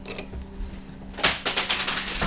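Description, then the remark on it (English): A sharp knock is followed by a quick, irregular run of small hard clicks and rattles as dice clatter across the floor during rolls in a tabletop game, with no voices. “Floor dice.”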